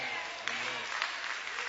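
An audience claps together in a dense, steady wash of many hands, loud and continuous with scattered sharper claps rising out of it.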